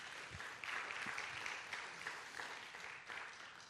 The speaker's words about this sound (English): Come on, can we give the Lord a good round of applause today?